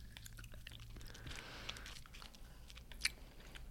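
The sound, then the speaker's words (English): Quiet chewing of a tough green gummy candy, with repeated soft wet smacks and squishes, then one sharper click near the end. No one speaks. “I'm not chewing it. I'm going to suck on it. I chewed it.”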